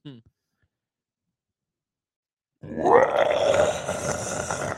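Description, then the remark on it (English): After a couple of seconds of silence, a person lets out a loud, rough, drawn-out growl, imitating a lion's roar. It lasts about two seconds. “I feel like I'm watching an MGM movie where the lion starts off. That's what it sounded like.”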